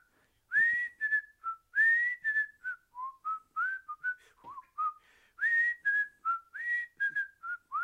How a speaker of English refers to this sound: What did I tell y'all about this guy's whistling abilities?